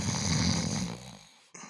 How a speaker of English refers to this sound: And then, as always, we bring in a sleeper. Cue the snores.